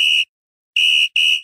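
Loud, shrill whistle blasts at a steady high pitch: a short burst, a pause, then several more quick blasts in succession, piercing with no talking.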